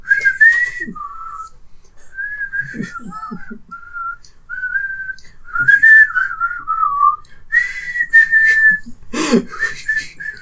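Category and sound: human body sound, person whistling a tune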